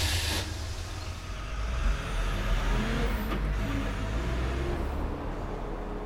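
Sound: truck engine revving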